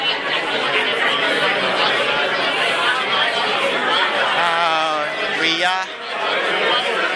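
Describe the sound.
Steady, dense crowd chatter from a convention gathering at the Hugo Awards, many overlapping voices blending into a continuous murmur, with a few individual voices briefly standing out near the end.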